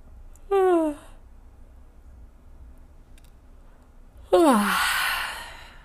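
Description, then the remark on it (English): Two yawns, each a voiced, falling groan; the first is brief, and the second is longer and ends in a breathy, airy exhale, with quiet between them. “Please note how you feel after the yawn.”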